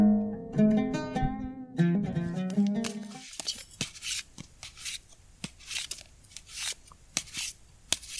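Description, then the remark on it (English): A deck of playing cards being shuffled: a quick series of crisp papery snaps and riffles, following a few seconds of soft tonal humming or music. “Remember how old you were when you first learned to shuffle?”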